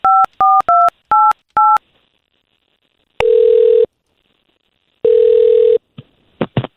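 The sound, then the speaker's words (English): Five quick touch-tone beeps as a phone number is dialed for an on-air call by a morning radio show on K92.3, each a short dual-pitched tone, followed by two longer ringback buzzes with a pause between, then a few faint clicks. “nothing that you want to tell us before we get her on the phone.”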